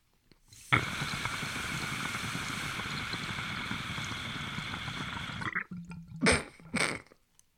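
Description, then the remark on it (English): After several seconds of steady, loud hissing, someone lets out a sudden explosive sneeze and cough at the same time, followed by a second short, rough burst. “Sneeze and a cough at the same time.”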